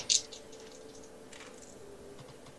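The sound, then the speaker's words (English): All the dice are rerolled: one sharp clack at the start, followed by a scatter of faint, light clicks and rattles as they settle, with no voices over it. “However, remind me, I spend a heart and I can reroll? Yeah. You reroll all the dice.”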